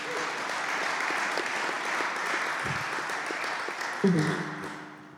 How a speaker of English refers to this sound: So let's get started. And please welcome them all with a round of applause, everyone.